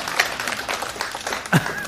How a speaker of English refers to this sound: If you want to clap, go ahead. Don't leave my buddy hanging.